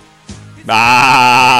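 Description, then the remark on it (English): A person lets out a loud, nasal goat-like bleat, a brief quiet lead-in followed by a sustained wavering 'baah' lasting about a second, alone. “Sometimes I think I'm a goat! Bah!”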